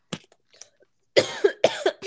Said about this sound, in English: I just, like, actually had to cough. I didn't mean for that, but it works well.